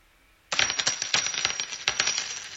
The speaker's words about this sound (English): Those are coins.